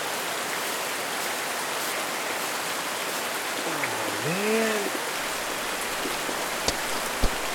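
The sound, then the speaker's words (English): Heavy rain pours down in a steady, dense hiss that fills the whole clip, with a faint rising and falling whine briefly cutting through midway and a couple of sharp drips near the end. “I think I'm gonna wait this one out in the car. And just until the rain clears up.”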